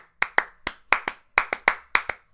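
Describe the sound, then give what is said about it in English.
Sharp hand claps in a quick syncopated rhythm, about a dozen crisp bright hits grouped in uneven pairs and singles, played by one person alone performing a piece written for two people hand clapping, with no voices. “So it's a piece for two people hand clapping. I'm going to do it by myself.”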